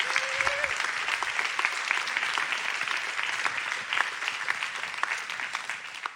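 A crowd applauds steadily for several seconds for a man who has just shared his story, a dense wash of many hands clapping at even loudness, with a brief voice near the start.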